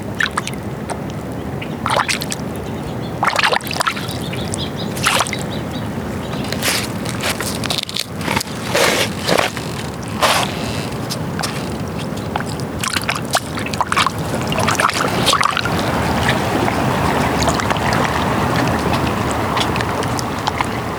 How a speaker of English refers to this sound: And hearing the water negotiate its space around other objects soothes my soul.